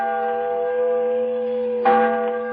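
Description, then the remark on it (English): A large bell rings with a deep, sustained tone rich in steady overtones, a great bell proclaiming liberty in a July 4th, 1954 radio show telling the story of the Liberty Bell; a second strike lands near the end, swelling the resonant hum. No voices are heard. “And the voice of a great bell proclaiming liberty.”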